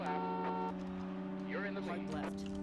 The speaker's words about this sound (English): Is that your fucking truck I'm hearing